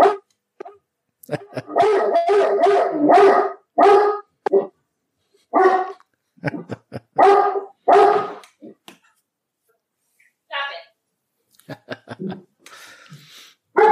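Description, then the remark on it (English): A dog named Juno barks repeatedly at a package delivery and a knock on the door, in loud, harmonic bursts, some drawn out into howl-like yowls, with short pauses between volleys and a few softer yips toward the end. “All right, just got a package. Sorry. Another one. Oh, no. Knock on the door.”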